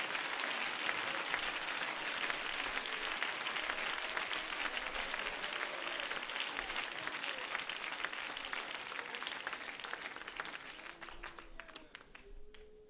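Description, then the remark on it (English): A crowd claps their hands together in a dense, steady wash of applause that holds strong for most of the stretch, with a few scattered voices rising near the end as it thins slightly. “Clap your hands.”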